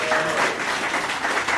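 An audience breaks into applause, a dense, steady wash of many hands clapping at once, fairly loud and even throughout with no voices standing out.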